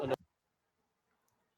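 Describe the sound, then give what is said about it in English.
A single sharp dog bark rings out loud, followed by a brief low grunt, then near silence for the rest of the moment. “The dogs know.”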